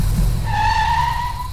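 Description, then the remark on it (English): A car engine roars as tires squeal sharply in a sustained, high-pitched screech as King's car takes off fast from a roadside with three people aboard. Loud, with no voices. “With Floyd's gun and his flashlight, they jumped back into King's car and they took off.”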